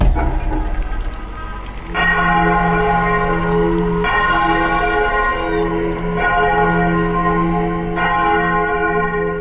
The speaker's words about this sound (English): It's a loud sound of a bell for 10 seconds, and within 60 feet, hopefully he can hear that shit, I guess.